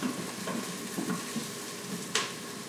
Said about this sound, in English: All right, so the chicken, how cooked are we wanting it? Yeah, let me take a look. It's just getting a little seared on the outside. Let's get it more brown.